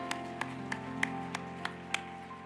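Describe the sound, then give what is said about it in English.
Seven sharp claps land in a steady, even rhythm, roughly three per second, over a sustained, droning chord of instrumental music, given as a clap offering of praise to the Lord during a church worship service. No voices are heard. “Can we give the Lord a clap offering of praise this morning?”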